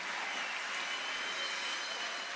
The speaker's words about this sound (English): Clap your hands for the Lord if you can.